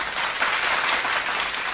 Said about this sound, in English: First, I want to play, if Kelly's ready, a little bit of mom applause for every mom who's out there and deserves applause.